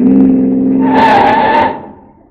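A car engine roars, then tires let out a loud, shrill screech for about a second as the car skids to a sudden stop to pick up a passenger, leaving a low idle.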